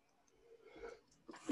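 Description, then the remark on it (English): A single sneeze: a short breathy inhale builds up, then a sudden loud, sharp burst of air erupts at the very end. No one speaks. “God bless you.”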